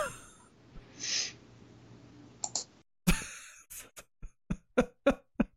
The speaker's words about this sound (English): I love how he immediately did a quiet sniffle after I said that. It was that or have it drop down. My sinuses just decided to drain out of nowhere, so that's fine.